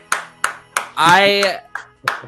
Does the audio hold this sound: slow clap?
yes